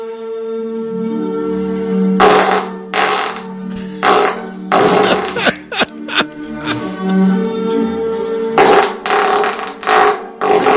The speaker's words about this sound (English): Mr. Methane. All real farts, folks. All real. My question is, what the fuck did he eat when he farting like that? No, when we had a boy, he explained how he does it. He's able to bring in all kinds of air to expel.